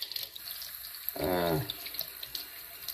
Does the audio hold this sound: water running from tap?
yes